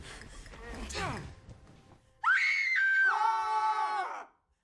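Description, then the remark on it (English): A loud, sustained human scream rings out, rising sharply and then holding shrill stepped tones for about two seconds, following a stretch of muffled, noisy commotion. “Why are you screaming?”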